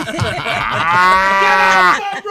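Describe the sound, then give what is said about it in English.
A single long cow moo sound effect, loud and drawn out, with a steady harmonic tone lasting over a second before it trails off. No voices accompany it. “I think we're going to hear that sound effect at least 10 more times.”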